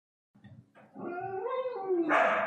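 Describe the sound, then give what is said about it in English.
Dogs bark and yowl in drawn-out, wavering tones after a few soft grunts, building louder toward the end as another dog on the floor joins in barking, with no one talking. “He's on the floor barking as well.”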